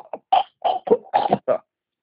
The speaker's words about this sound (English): You don't cough like that when you're sucking dick. It's just it's way more of a...